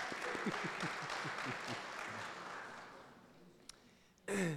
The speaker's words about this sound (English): Yeah, we can cheer for that. I mean, we can clap it up for that. That's pretty cool.